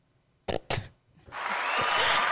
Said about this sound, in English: Why did you even clap after that? I didn't think you was going to hit the applause.